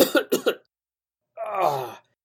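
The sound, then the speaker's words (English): Three quick, harsh coughs in rapid succession, fairly loud, followed after a short pause by a drawn-out, strained vocal groan. “You guys see Cecil walking around the outskirts, and you all of a sudden just see him like flinch and keel over and start coughing.”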